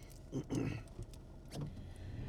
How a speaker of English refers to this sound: Sorry, just taking a little water here.